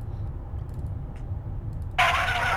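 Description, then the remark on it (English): A car engine rumbles low and steady, then a loud, harsh screech bursts in and holds to the end, like tires skidding as the car pulls over to a stop. “Big screech.”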